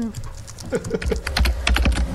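Rapid, uneven computer keyboard typing as someone browses the web, a stream of sharp plastic clicks that grows louder and more forceful partway through, with no voices over it.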